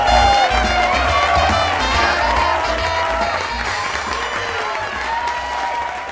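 A studio audience applauds loudly and steadily for about six seconds, a dense wash of clapping mixed with cheers and whoops that holds an even level throughout.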